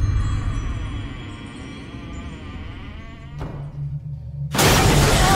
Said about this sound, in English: The house is haunted, so there's a ghost in the house, and there's the doors that are slamming and all that kind of stuff.